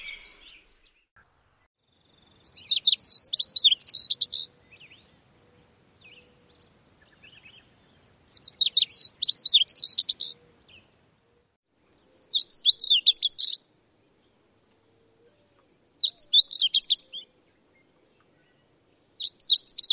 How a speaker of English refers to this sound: Listen for the buzzy quality to the notes at the end of the song. This will help distinguish it from other warblers.